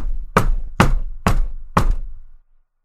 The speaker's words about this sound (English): Knock, knock, knock, knock.